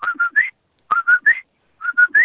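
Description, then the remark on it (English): A person whistles an imitation of a bird's call three times in a row, each a quick three-note phrase ending in a rising slur, clear with brief pauses between. “I'm going to do a bird impression. There's a bird that whistles this way.”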